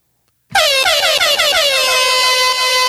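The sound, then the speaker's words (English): A loud, blaring air horn kicks in after a brief silence and holds a steady, harmonically rich blast for over two seconds, with no voices over it. “Give me another air horn.”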